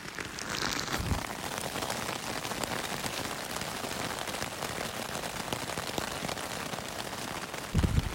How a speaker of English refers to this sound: So it's raining pretty hard. It's the third night. I am cozy in my tent, which is filled with mostly damp things that I own.